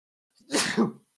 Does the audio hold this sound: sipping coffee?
no